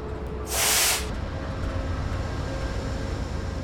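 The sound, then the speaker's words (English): An Amtrak train with diesel locomotives numbered 25 and 197 idles at a station platform with a steady low engine rumble, broken early on by one short, loud hiss of air lasting about half a second. “We've got numbers 25 and 197 on the front of this train.”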